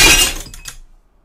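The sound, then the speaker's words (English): A loud crash of glass breaking, with a sharp burst followed by a few scattered tinkling shards that quickly fade to silence, heard alone without any talking. “That was a duck breaking all over the floor.”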